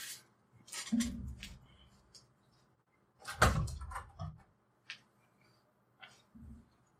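A door opens and closes with several dull thuds and clunks spread out over a few seconds, followed by quieter shuffling movement.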